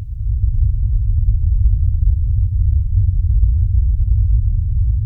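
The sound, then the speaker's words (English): A steady, deep synthesized hum made with a script, like the Star Trek warp core noise, all low-end rumble with almost no treble, holding at an even loudness throughout with a faint throbbing texture and no voices. “And what Jason has sent in is more like the warp core noise. It's got much less high end. It's much bassier.”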